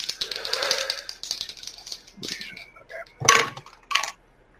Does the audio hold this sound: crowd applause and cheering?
no